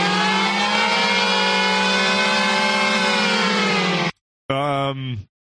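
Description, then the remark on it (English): A loud, harsh nuclear alert alarm sound effect, played from the sound buttons of a voice-changer app, blares as a steady, buzzing tone for about four seconds, breaks off briefly, then returns in a shorter wavering burst before cutting out. “No, it is Nuke Alert from the mix buttons.”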